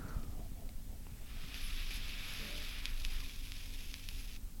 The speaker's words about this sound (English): okay, let's hear that crackle. This is some Juul ASMR.